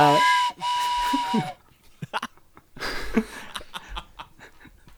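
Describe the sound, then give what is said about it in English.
A loud, steady train whistle blasts for about a second and a half, then cuts off, followed by scattered chatter and laughter from people. “Train whistle?”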